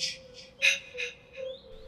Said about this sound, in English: Like an echoey whisper saying, kill, kill, kill, ma, ma, ma. No, it's like, what the fuck? It's clearly saying, kill, kill, kill, ma, ma, ma.